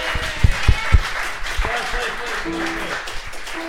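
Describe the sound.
A crowd applauds steadily, a dense wash of clapping with a few heavy thumps early on and voices calling out and cheering over it.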